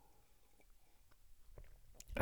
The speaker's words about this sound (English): Just have a quick sip of my honey and hot water.